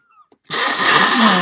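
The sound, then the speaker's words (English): A loud, sustained blast of nose blowing starts abruptly after a brief quiet moment. It sounds rough and breathy, with a low honking tone creeping in toward the end. “Oh, I need to blow my nose now.”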